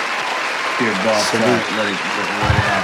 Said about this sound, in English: I gotta let that drop play completely through, the applause drop, because Molly be ruining First Take like a motherfucker, boy.